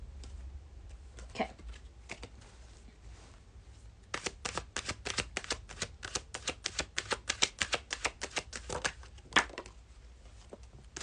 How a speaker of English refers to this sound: Yeah, I think, you know, what I was getting when I was shuffling the cards, Peachy, was that this isn't necessarily about the right decision or the wrong decision.